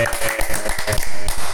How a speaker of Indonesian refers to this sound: Tepuk tangan dulu dong.